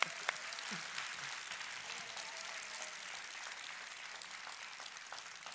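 An audience at a Sunday church service applauding steadily after a story is shared, a dense wash of many hands clapping at an even level throughout, with no voices standing out.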